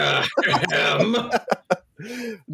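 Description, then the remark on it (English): A loud cough with a rough, throat-clearing quality, breaking into a few short sharp bursts before ending in a brief voiced hum. “No, the cough makes it sound like I'm being shady”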